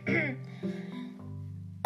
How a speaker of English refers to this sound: Sorry, I have a cough.